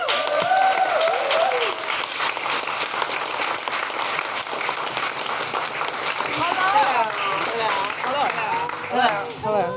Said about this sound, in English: Please, a big round of applause for Marilyn Rajskub.